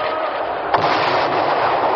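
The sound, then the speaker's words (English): Fireworks with streamers and a shower of stars burst in a dense, continuous crackling roar, with one sharp, louder bang standing out partway through. No voices are heard. “Look, streamers, a shower of stars. It's marvelous.”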